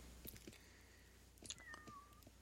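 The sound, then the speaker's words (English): A single faint cat meow in the background, high and drawn out, sliding downward in pitch, over a low hum with a few soft clicks and taps. “is that another cat that you've managed to steal off of somebody in the background?”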